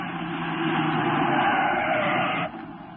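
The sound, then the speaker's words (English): The Green Hornet's car roars loudly and steadily as it speeds off too fast for the pursuing troopers, the engine and tire noise holding strong before dropping off abruptly near the end. No voices are heard. “You troopers, after that car. It's going too fast.”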